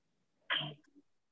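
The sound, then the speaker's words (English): A single sneeze bursts out abruptly and loud, a sharp noisy blast that fades quickly into a soft breathy trail, with quiet before and after. “Okay, God bless you.”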